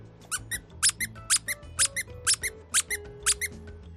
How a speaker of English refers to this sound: Here's a rain frog. And here's a dog toy. Another rain frog. How about another dog toy?